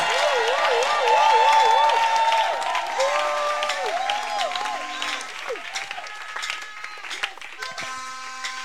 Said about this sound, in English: if you are clapping, clap clap clap.